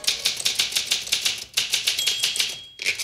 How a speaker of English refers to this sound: Be like, I want to do this all on a typewriter.